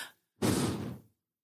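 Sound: audible heavy breathing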